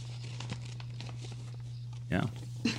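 Paper rustles and crinkles in two short bursts, the second a little sharper, over a steady low electrical hum with faint scattered crackles in between.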